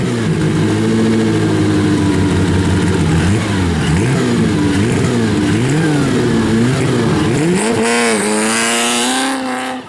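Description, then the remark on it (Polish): The original engine of a vintage Bugatti race car revs loudly and steadily as a young driver races along the road toward Morskie Oko, its pitch rising and falling in waves before climbing sharply near the end as it accelerates. “To, czego słuchacie, to dźwięk oryginalnego silnika Bugatti, którym młody kierowca pędził drogą w stronę Morskiego Oka.”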